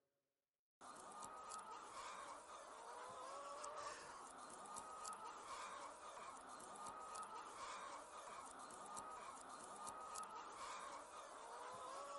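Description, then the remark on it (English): A large flock of about 1,000 Black Australorp hens, a non-hybrid old American breed, housed in two portable 12-by-20-foot hen houses, clucks and chatters continuously. It is a dense overlapping wash of bird calls, steady and loud throughout, with no one speaking. “There are 500 birds in each one. And these are black astrolorps, so there's 1,000 birds here.”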